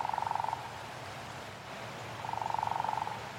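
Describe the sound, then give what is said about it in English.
A frog gives two rapid, buzzing trills a couple of seconds apart, each a fast pulsing rattle, fairly faint against a steady background hiss. “Frogs number two selected.”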